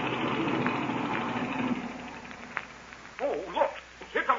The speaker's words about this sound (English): Good. Then I'll cut the engine.